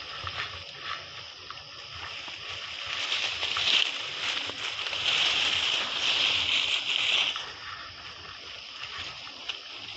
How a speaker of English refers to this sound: So you hear the splashing sound, that's me falling in the water.